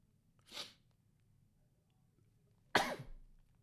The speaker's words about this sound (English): I just said in my mind, if I sneeze again, I'm going to get $1 million. I'm going to be rich, y'all. But no. That sneeze ruined the fuck out of my mood. Do y'all like sneezing? I actually do like sneezing.